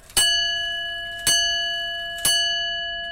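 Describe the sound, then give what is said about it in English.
A pendulum clock's bell strikes three times on the hour, triggered by the hands through a series of wheels, at an even, steady pace, about a second apart, each bright metallic chime ringing on and slowly fading into the next. No voices are heard. “And it then has a series of wheels for the bell, which will be triggered off by the hands on the hour, and you'll get something like that.”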